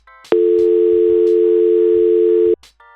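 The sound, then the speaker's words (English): A loud, steady telephone tone after a cell phone call ends, droning unbroken for about two seconds before cutting off abruptly, with faint brief clicks around it and no talking. “You can hang up. You're using your cell phone.”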